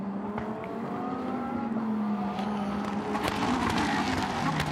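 Several Lamborghini race cars roar by at high speed in a 2022 Lamborghini Super Trofeo race at Elkhart Lake, engines revving and climbing in pitch as they accelerate along the track, loud, with a steady dense engine drone throughout and no talking.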